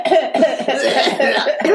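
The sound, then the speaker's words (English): A loud fit of harsh coughing, several rasping coughs following one another in quick succession with no pause between them. “And so, with a smile, a cough, and a merry fleer.”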